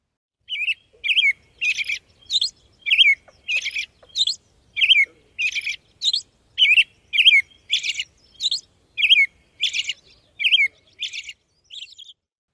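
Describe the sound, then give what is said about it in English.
An American robin's dawn chorus: a rapid, nearly unbroken string of short whistled phrases, mixing clear caroling notes with thin, high squeaky ones in a steady rhythm, with no talking. “Now, let's listen to the dawn chorus of the American robin.”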